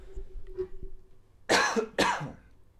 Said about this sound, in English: I got a cough. Hold on.